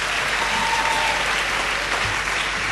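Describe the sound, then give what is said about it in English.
A church audience applauds steadily to welcome those watching the service online. A dense, even wash of many hands clapping holds at a constant loud level for a few seconds, with no voices standing out. “Why don't we just give them a big welcome online.”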